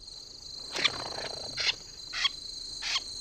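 A Wilson's snipe gives its harsh, raspy flush call as it is scared off the ground, about four scratchy bursts repeated at roughly half-second intervals, with soft fluttering wing beats caught by a close microphone, over a steady high insect-like hiss; no one speaks.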